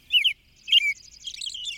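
An American robin sings: two bright, slurred whistled phrases followed by a rapid run of higher chirping notes, clear and alone against a quiet background.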